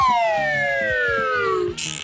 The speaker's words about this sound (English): What was that? Do that again. I need like that again. Like a car horn? That's a car horn. Why do you just have like 1950s cartoon sounds?